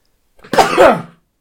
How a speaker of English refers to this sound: he sneezed, listener. Oh, it's happening again. It happened again. That's it. Okay, that was it. Sorry about that.